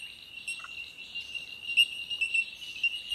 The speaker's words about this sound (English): This nature noise is coming from a type of bird called a bell bird. It's a good name, isn't it? And it sounds like there's a whole group of them living together in this area. It's called a colony. Some people also call these birds bell miners.